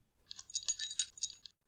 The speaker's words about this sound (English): There, the jingling sound again. It was coming from his right, just on the other side of his piece of shattered wall, in the direction of the largest and most open part of the ruins.